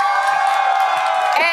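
crowd cheering

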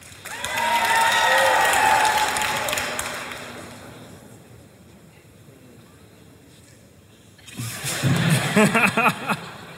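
audience cheering and applauding

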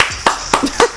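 hand clapping

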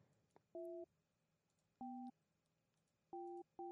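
phone keypad dialing tones

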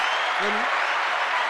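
hand clapping

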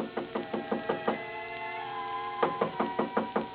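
knocking on a door

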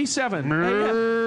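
cow mooing

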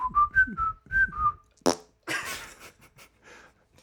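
person whistling

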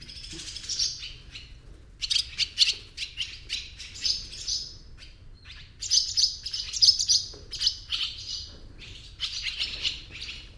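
swallows twittering

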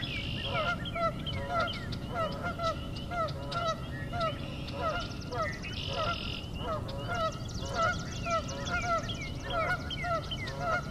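geese honking

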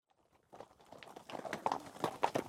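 horse hooves clip-clopping

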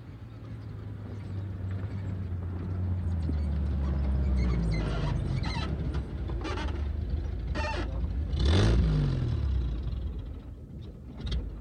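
car engine running

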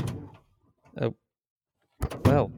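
door opening and closing

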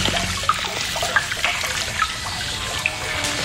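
toilet flushing water

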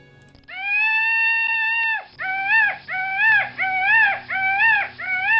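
peacock call

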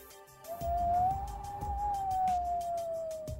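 howling wind

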